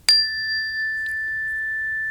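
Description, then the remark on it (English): A meditation chime is struck once at the start of a guided breathing meditation, giving a bright, clear metallic tone that rings on steadily and slowly fades, with no voices present. “So just do a couple of hits with the chime to get us going.”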